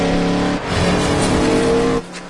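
A racing car engine revs hard with tires squealing, loud, roaring steadily for about two seconds before dropping off abruptly. No one speaks.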